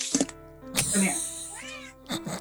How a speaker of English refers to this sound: Sound like a cat.